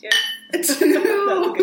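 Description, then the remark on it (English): Wine glasses clink together once near the start in a toast, a bright ringing tone that fades quickly, followed by people talking and laughing. “We've got the wine, we've got the gyne talk.”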